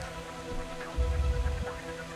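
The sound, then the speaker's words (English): A rain sound effect plays on its own, a steady, fairly quiet wash of falling rain with a brief swell of low rumbling in the middle. “Turn down the rain a little bit.”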